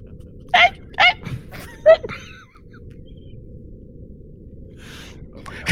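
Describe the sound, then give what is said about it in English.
A tiny, puppy-like dog gives three short, sharp yips in quick succession, followed by a steady low rumble of background noise and faint rustling. “It's a tiny dog.”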